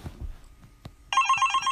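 After a quiet stretch with a couple of soft knocks, a mobile phone suddenly starts ringing: a loud, trilling electronic tone that pulses rapidly and continues to the end.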